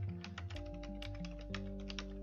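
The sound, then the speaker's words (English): Quick, uneven clatter of keys being typed on a computer keyboard while writing a message in a chat, fairly quiet, with a steady low electronic hum running underneath the whole time. “I'm typing right now in general chat that the podcast they're recording is pretty awkward because it's just me talking.”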